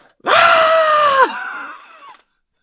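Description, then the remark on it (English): A voice imitates a loud, sustained scream, forceful for about a second, then drops abruptly into a quieter, wavering tail before cutting off. “You know, I'd heard just like a little like... Rah, like some like shout or vocalization.”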